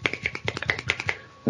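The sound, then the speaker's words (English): A quick run of crisp finger snaps, roughly ten in a second and a half, sharp, in an uneven rhythm like a scattered round of beatnik-style snapping applause. “That's snap. And there's the beatnik clap.”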